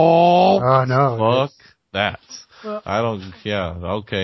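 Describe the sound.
A person imitates a manual stick-shift car engine revving with their voice, making a run of rising, droning vocal sweeps broken by short pauses, like shifting up through the gears, loud.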